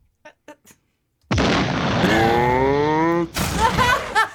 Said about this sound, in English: Well, listen, explosion followed by low voice.